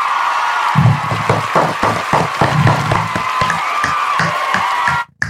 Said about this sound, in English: Clap it up for her one last time.